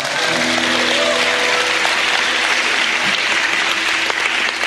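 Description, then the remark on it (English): An audience breaks into steady, sustained applause, dense clapping that stays loud and even for several seconds with no one speaking over it. “That one you should have clapped.”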